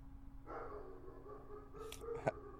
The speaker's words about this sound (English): I'd just like to put a disclaimer here that there's going to be a small amount of breaks because someone's dog likes to bark.